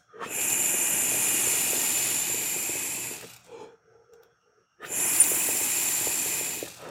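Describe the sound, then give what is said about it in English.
A loud sizzle of a dab of hash rosin hitting a hot nail, crackling and hissing steadily for about three seconds, a brief quiet pause, then another burst of sizzling with small pops. “as I take my dab of hash rosin right here, which is just going to be so delicious. You hear that sizzle?”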